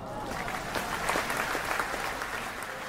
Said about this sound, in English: Well, round of applause for the Summit League.